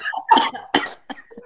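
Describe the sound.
A strained, raspy attempt at a growl vocal technique, learned from TikTok, breaks into three harsh coughs in quick succession, each a loud rough burst followed by a short gasp.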